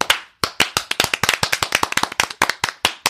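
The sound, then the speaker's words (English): A few people clap together in a quick, uneven burst of sharp, loud hand claps that overlap in a rapid patter, with no talking. “And we all have to clap to bring her back to life.”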